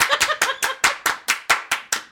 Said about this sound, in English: Slide to the left. Slide to the right. Everybody clap their hands.